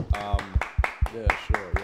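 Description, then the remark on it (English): A few people clap in a quick, steady rhythm, the claps fairly loud, with voices chattering over them throughout. “Can we get a round of applause for Hannah and her efforts today?”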